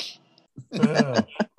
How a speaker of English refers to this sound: Keep talking so they can't hear me blowing my nose.